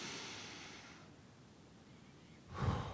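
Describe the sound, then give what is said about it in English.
A slow, airy inhale of about a second fades into a quiet pause, followed by a louder breathy exhale near the end, as a group of people on sand take a slow deep breath together during a guided breathing moment. Soft, with no talking. “Let's just breathe for a second, right?”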